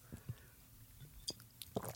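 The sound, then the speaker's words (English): Quiet mouth sounds of someone taking a big sip of Hennessy liquor and swallowing: a few brief wet gulps and clicks spread across a couple of seconds, with no talking. “That was a big sip. I could hear that swallow.”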